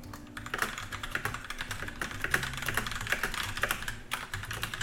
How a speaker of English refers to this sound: It's going to be typing for just 1 second.